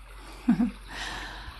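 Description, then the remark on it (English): A voice imitates a bubbling brook: two quick low gurgling bloops, then a soft hissing rush like trickling water, short. “But suddenly we come across a bubbling brook.”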